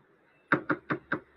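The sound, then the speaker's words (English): Four firm knocks on a wooden door, evenly spaced, ringing out clearly with no one talking. “Jackie Joyce, in her bathing suit, knocks at the door, and I let her in.”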